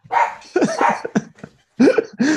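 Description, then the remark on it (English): A dog barks several times in quick, uneven bursts, fairly loud, with short pauses between some barks and no one speaking. “Matt, do you have a dog now?”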